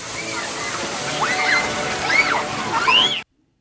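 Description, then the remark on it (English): A steady hiss of water spraying runs throughout as a man sprays a kid with water, the child's high squeals and voice rising over it, before the sound cuts off abruptly. “He's just spraying a kid with water.”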